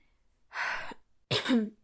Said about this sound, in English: Sorry, I'm like coughing into the mic. That's so unpleasant.